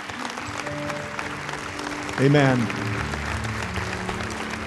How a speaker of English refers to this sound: Would you stand together on your feet and let's just give God a wonderful clap offering together. Would you do that?